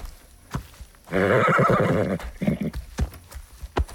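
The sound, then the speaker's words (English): A horse named Shiloh, at the end of a long trail, lets out a loud, harmonic whinny lasting about a second, followed by snorts and a few sharp hoof clops; no one speaks. “Yep, I know, but at least there'll be water and hay for you.”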